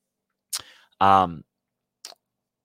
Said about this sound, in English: Pardon me as I sip on some coffee this morning.